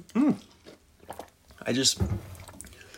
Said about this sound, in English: Excuse me. Oof. Let me get a sip of water.